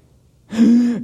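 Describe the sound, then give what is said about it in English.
A single sharp, strained gasp voiced by a man, rising abruptly after a brief quiet and held for about half a second, fairly loud, imitating someone struggling for air. “Gasping for air, because when you're crucified, if you don't eventually die, they break your legs so you can't push yourself up, and then your rib cage falls on your lungs and you can't breathe and you suffocate.”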